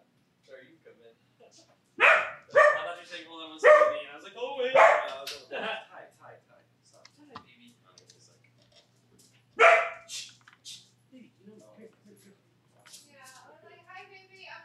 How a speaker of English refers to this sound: Okay, sorry about that. A friend came over. He's caused my dogs to freak out.